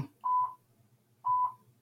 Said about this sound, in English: Who's beeping? Sorry. We're going to go into in-game news, and I'm going to go take care of that beeping in the background.